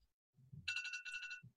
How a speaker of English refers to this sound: So I hear the alarm.